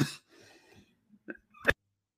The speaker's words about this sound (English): Excuse me, keep coughing while doing these podcasts.